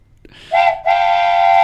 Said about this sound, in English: It's the bandwagon train.